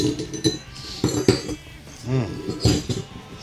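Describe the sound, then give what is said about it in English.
Several bright, sharp clinks ring out one after another as ice cubes are put into a cocktail glass, fairly loud with irregular timing and a little background murmur. “I don't want to do this ice in the, now put ice in the glass and strain it.”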